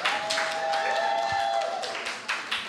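An audience breaks into steady, dense applause lasting a few seconds as a guest is welcomed onto the stage, many hands clapping at once with a faint sustained tone running underneath; no clear speech stands out.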